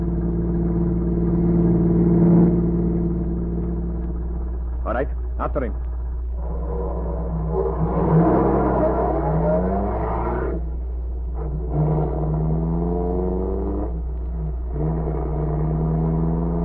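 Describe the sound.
A car engine hums steadily, then revs and accelerates, its pitch climbing and falling in surges, while a man speaks briefly over the rumble.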